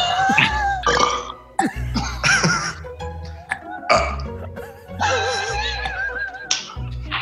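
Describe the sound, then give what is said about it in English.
A string of loud burps follows one after another, some short and clipped, others long and croaky with a throaty rasp, filling the whole stretch with no talking. “… did a burp.”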